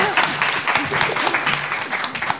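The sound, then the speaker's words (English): An audience at a talk with a filmmaker claps steadily, a dense, continuous patter of many hands with small sharp peaks, fairly loud throughout, with faint voices murmuring underneath. “Round of applause”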